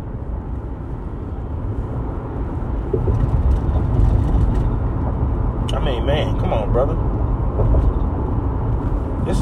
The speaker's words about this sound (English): I hate this type of traffic. I don't even know what's going on.